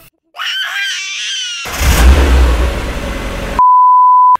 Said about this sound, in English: And with all that being said, we'll close out and let the sound of a hamster starting a lawnmower play you out.